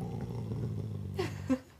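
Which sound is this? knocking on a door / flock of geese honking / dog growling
dog growling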